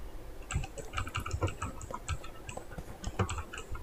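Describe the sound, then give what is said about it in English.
Rapid clacking of a mechanical keyboard, keys struck in quick irregular bursts with sharp, crisp clicks, fairly loud, with no voices. “It's a mechanical keyboard.”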